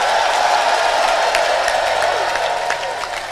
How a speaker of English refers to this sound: Come and clap your hands and scream it.